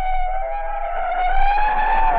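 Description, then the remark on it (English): A gigantic hook-and-ladder fire truck's engine drones loud in the streets of Istanbul, its whining pitch creeping upward as the heavy vehicle pulls away over a low rumble, with no voices. “A procession of firemen bearing two bundles wrapped in canvas, rushed out of the German compound and boarded a fire truck, a gigantic hook and ladder.”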